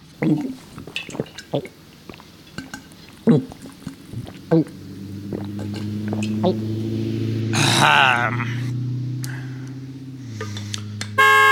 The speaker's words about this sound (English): Do the other podcasts you listen to have a horn? That's right! This podcast is recorded in the Spirit Mobile, which is an old RV converted into a podcast studio.